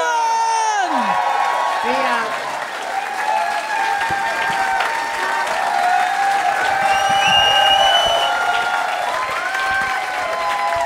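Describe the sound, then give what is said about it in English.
A live audience at the end of a Little Dum Dum Club show claps and cheers steadily, with whoops and shouts rising over dense, continuous applause that stays loud throughout. “Big round of applause”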